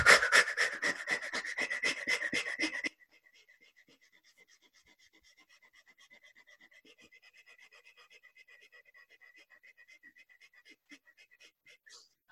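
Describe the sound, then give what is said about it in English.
Rapid fire breathing exercise, in through the nose and exhaling really rapidly, a quick rhythmic run of sharp, forceful breaths at about five per second, loud, lasting around three seconds before falling to near silence. “So that's fire breathing. It's in through the nose and then exhaling really rapidly.”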